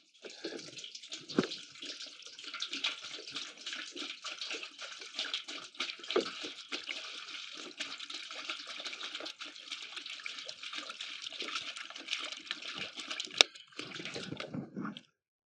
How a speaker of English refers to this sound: Poured water into a basin.